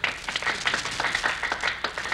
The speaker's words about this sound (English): the people on the sidewalk are applauding.